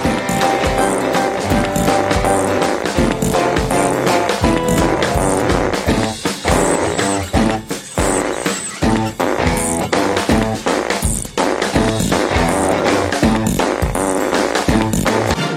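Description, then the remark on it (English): Stools squeaking as people spin on them, the squeals layered into a loud, dense, rhythmic musical passage that carries on steadily throughout, with no talking. “when you spin on a stool, it squeaks”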